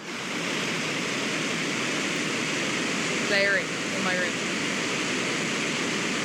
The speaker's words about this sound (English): Can we play a little bit of white noise into the microphone? Never been done before.